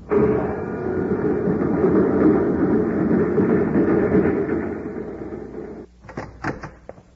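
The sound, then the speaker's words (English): A steady mechanical whooshing rumble of a magnetic car with a self-contained power unit zipping down a shaft runs for several seconds, then cuts off into a few sharp clunks of the car's door shutting. No voices. “It's a magnetic car, self-contained power unit. You can zip down the shaft and come back with food and ray guns.”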